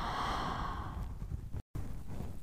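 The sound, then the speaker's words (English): A slow, deep breath drawn in and then released in a long, airy exhale, fairly soft, with a brief gap between the two. “Take a deep breathing, inhale, and a deep breath out, exhale.”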